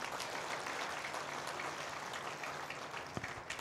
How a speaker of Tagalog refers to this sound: Sino po may natututunan? Pumalakpak na malakas.